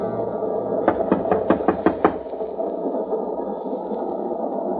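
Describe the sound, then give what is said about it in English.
A quick, evenly spaced run of about seven firm knocks on a compartment door, loud, heard over a steady background hum that continues after the knocking stops. “Open up or I'll break the door in.”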